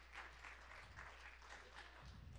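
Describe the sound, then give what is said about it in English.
A church audience claps their hands in praise to God in a sustained, dense burst of applause, steady and fairly loud throughout, with a low hum underneath and no clear speech. “Let's give God a hand clap of praise.”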